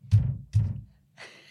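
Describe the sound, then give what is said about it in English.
Two heavy, dull knocks pounded on a padded wall as if at a noisy next-door neighbour, evenly spaced about half a second apart, each a deep muffled thump, followed by a short pause and a faint voice starting up. “Do you want to do the dad thing and knock on the wall?”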